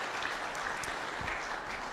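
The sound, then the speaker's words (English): A church audience at Coburg Alliance applauds after pledging to pray for and support a young boy and his mother: a steady, dense wash of many hands clapping at once with no clear individual beats, holding an even loudness throughout the two seconds. “Round of applause.”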